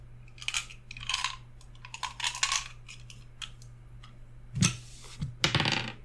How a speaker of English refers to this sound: You need to roll a d6 because you're pretty low down on the table now.